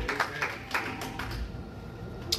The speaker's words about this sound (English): Amen. Praise the Lord. Give God a hand clap of praise as we stand to our feet.